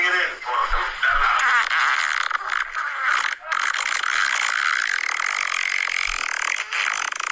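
A long, loud fart sound drags on for about seven seconds, rasping and wobbling in pitch, with a few brief sputters and breaks early on before steadying out.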